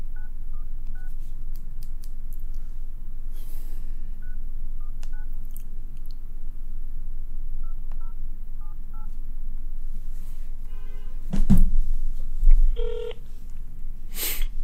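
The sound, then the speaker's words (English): Short bursts of touch-tone keypad beeps are dialed in small clusters over a low steady hum as a phone call is placed to a Speaker's office, followed near the end by a couple of brief tonal rings on the line. “So this is the phone call I made.”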